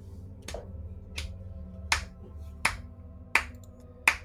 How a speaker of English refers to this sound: So after the crowd kind of is cheering and it's like, yeah, and you hear the slow clap.